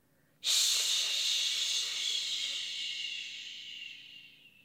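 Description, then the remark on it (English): A single long breath pushed out through the mouth as a steady "shh" imitating running water, in a breathing exercise done with arms held out like faucets and fists squeezed: a bright, airy hiss that starts abruptly and slowly fades over about four seconds, with no talking. “Then we'll breathe out our mouth and let the water come out and make a water sound.”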